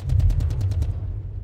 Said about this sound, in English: The year is 1991, and the United States Embassy, a beacon of hope in this war-torn wasteland, is under siege. The sound of gunfire echoes through the streets like the howling of a thousand banshees.